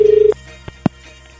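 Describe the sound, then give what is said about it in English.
A short burst of warbling telephone ringing tone heard down the line, on a call to a number picked at random from the phone book, stops abruptly, followed by a few soft clicks as the receiver is picked up. No one speaks. “I'm happy because I've got a friend who's Scottish, and whenever we can talk about Susan Boyle, I get her to ring people up at random from the phone book and pretend to be Susan Boyle just for the fun of it.”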